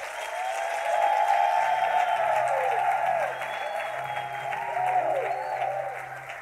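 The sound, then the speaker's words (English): An audience claps their hands to praise God in sustained, dense applause that stays loud throughout, with a low sustained tone and faint voices mixed in beneath the clapping. “Why don't you clap your hands and give God praise for a minute?”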